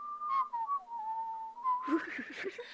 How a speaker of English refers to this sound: I can't whistle and laugh at the same time. That's an advanced whistling technique.